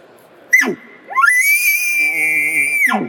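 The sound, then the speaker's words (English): A demonstrated elk bark scream call: a short, sharp bark, then a rising high-pitched scream that holds a long, steady whistling tone before dropping off abruptly. The call is loud, with no talking. “So here's a bark scream.”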